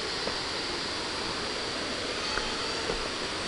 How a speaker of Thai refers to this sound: นี่ได้เสียงน้ำตกไหมคะ